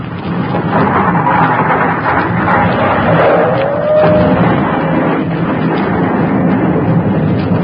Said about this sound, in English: Hey, what's those noises? The sacred city's gone. It's blown up. Yeah, but that whistling noise... That's part of the sacred city whizzing by. We started a new volcano. Those are tons and tons of rock and dirt being thrown into the air.